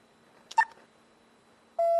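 A bill acceptor machine, as a $5 bill is inserted, gives a short burst of clicking and a brief beep, then after a pause a loud, steady, low-pitched electronic tone begins and holds to the end. No one speaks.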